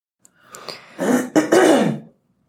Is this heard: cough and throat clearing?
yes